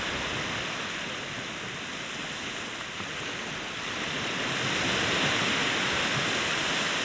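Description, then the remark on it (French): A dense, steady fizzing hiss of salty sea foam, like countless tiny bubbles popping in the folds of receding waves at the water's edge, swelling slightly louder partway through. It is continuous, with no voices. “Une multitude de bulles qui pétillent dans les plis.”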